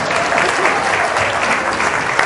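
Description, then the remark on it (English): An audience in a church claps steadily and continuously, a dense wash of many hands, fairly loud and sustained throughout with no pauses, while people run and jump to the back of the church and back. “We're going to run and jump all the way to the back of the church and back again while they clap.”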